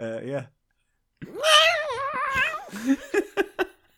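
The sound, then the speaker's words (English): A human voice imitates Blofeld's cat panicking as it is prodded on the rear: a brief cry, a pause, then a long, wavering yowl that breaks into several short, sharp yelps, loud. “care to do an impression of Blofeld's cat getting prodded on the butthole?”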